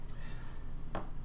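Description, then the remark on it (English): A single short, muffled cough bursts out near the end against a low background hum, fairly quiet, with no one talking. “So, yes, I'm still fighting this cough, whatever it may be.”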